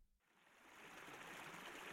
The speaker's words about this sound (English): I've stopped for a moment in my climb beside a babbling brook. It's coming straight down from the hill. It's obviously carrying the most recent rain shower, which has hit the slopes of Ben Lawers.